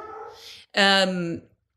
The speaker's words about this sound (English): My dogs are barking. Should I pause for a second? Yeah. Quiet, babies!